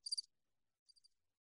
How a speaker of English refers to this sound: See? So quiet, it's even crickets.